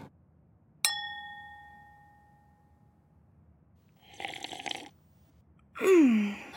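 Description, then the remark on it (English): A single bright clink of glasses in a toast, its ringing tone fading slowly, followed by a brief noisy rustle and then a loud, low burp. “Let's cheers to that one, shall we?”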